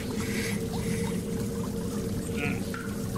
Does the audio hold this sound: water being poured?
yes